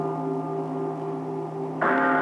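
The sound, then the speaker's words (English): A deep, resonant mortuary bell tolls, its rich humming tone lingering steadily before a fresh, brighter strike rings out near the end. No voices, just the solemn bell sounding clear. “Graveyard rats stop their gnawing and listen in awe as a mortuary bell tolls.”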